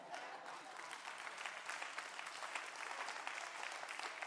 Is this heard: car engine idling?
no